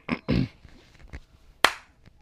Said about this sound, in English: A little clap.